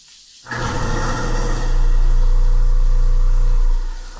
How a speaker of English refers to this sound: Judas, fuck, he just fed the thing to the damn garbage disposal.